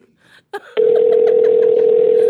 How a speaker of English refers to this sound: I'll answer the work phone. It's right in the desk.